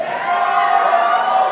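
A crowd yells and cheers together in a steady, dense roar that holds at full volume throughout the short moment, with many voices blending into one loud wash.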